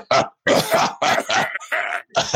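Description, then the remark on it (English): A person lets out a rapid series of about six harsh, throaty coughs, loud, with short gaps between them and no talking, as if deliberately forcing or imitating a cough. “I would just keep coughing on people with my COVID.”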